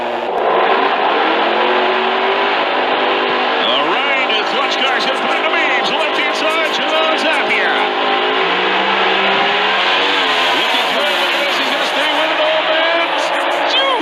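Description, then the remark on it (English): A drag racing car driven by John Zappia roars down the 1,320-foot strip at full throttle, reaching 265 miles an hour, its engine loud, pitch climbing and shifting as it accelerates for about fourteen seconds without a break. “And they're going to lay this growing stream car down 1,320 feet.”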